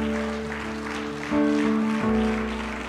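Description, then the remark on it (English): A church audience claps steadily in thanksgiving for a few seconds, a dense wash of many hands, while sustained organ or keyboard chords play underneath. “If you're glad Jesus Christ taught you how to pray, come on, give him a hand clap of thanksgiving today.”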